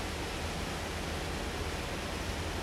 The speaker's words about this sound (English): Perhaps if you can hear sounds from my side of the experience, there's the sound of heavy rain.